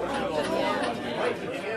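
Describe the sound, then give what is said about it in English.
Steady crowd chatter fills the busy Kilkenny City Bar in Kilkenny, many overlapping voices blending into a continuous murmur with no single speaker standing out, moderately loud throughout. “It's the Kilkenny City Bar where they turn the TV off every second Tuesday night.”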